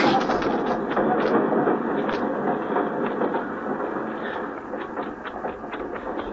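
A steam train sits at a station, hissing loudly and steadily, with scattered metallic clanks and knocks over the continuous rush of steam.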